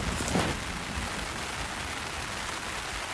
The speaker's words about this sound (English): Well, no matter, I set fast as the thunder rumbles, getting everything inside my tent just as it begins to rain.